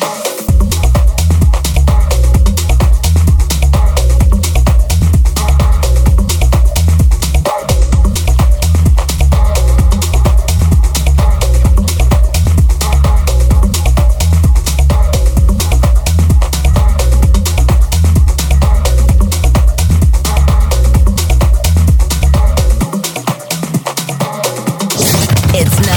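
A loud electronic dance track with a steady, pounding four-on-the-floor beat, heavy repeating bass and bright synth layers, playing continuously without vocals until the low end briefly drops out near the end.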